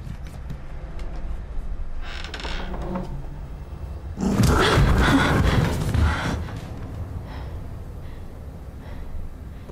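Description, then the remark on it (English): A door creaks open in one long, loud, rasping stretch lasting a couple of seconds, preceded by a softer scraping creak and followed by a quiet, hissy background with no talking. “So it is, it's good and freaky, and nice creaky door action there going on.”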